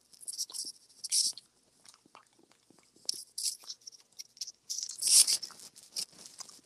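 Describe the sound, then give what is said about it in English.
Crunchy chewing of cold green beans, a series of irregular crisp bites and mouth sounds with brief pauses, fairly quiet and with no talking. “Cold green beans. This is disgusting, man. Yeah. It's like super crunchy.”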